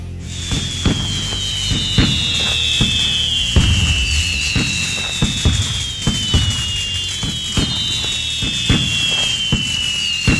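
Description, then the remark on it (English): Fourth of July fireworks burst and crackle in a steady barrage of sharp bangs, with shrill whistling rockets gliding downward in pitch over and over. Loud and continuous throughout, with no voices. “Ah, the unmistakable sounds of 4th of July.”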